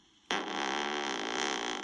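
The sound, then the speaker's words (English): A loud, buzzy fart sound bursts in abruptly and drones on steadily for well over a second, alone, with no talking. “Stop with the farts.”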